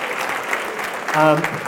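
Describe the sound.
An audience of nurses applauds at the close of a day's session before lunch, in a steady, dense wash of clapping, with a brief voiced cheer rising over it near the end.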